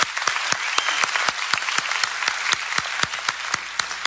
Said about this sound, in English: Now every head up and every eye open, can you give a round of applause for the decisions that were made?